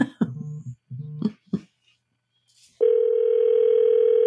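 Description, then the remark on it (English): A few short electronic beeps and bursts, a brief silence, then a steady, unbroken telephone dial tone hums loudly until the end, as a call to a sister is placed from a radio studio. “So I'm going to call my sister. I think I still remember her phone number.”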